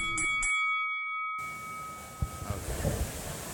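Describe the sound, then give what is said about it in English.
A bell is struck twice in quick succession, its bright metallic tone ringing on briefly before fading, followed by a noisy room with some faint bumps and clatter. “It's Mega Rand, it's Matt Mania, ring the bell.”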